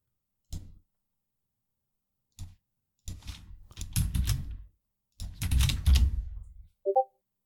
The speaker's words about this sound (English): Clack, clack, clack. Clack of the keys.